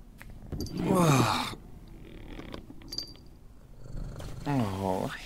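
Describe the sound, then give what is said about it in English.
A cat purrs steadily, a low rumbling texture running throughout, broken by two louder drawn-out meow-like calls, one near the start and one at the end. “Hey there, kitty.”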